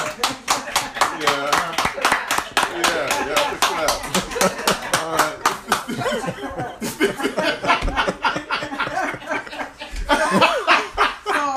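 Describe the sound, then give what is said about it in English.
A burst of rapid applause from several people, steady sharp claps running throughout, mixed with chuckles and laughter and some talking underneath. “No, see, all right, we clap. That's a clap.”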